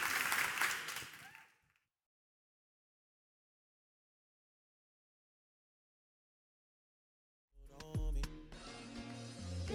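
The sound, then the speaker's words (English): A brief burst of audience applause for a guest speaker, dense and fairly loud, fades out within two seconds, followed by a long silence before music with a steady beat kicks in. “But once again, thank you all for coming, and we might give our amazing guest speaker one more round of applause.”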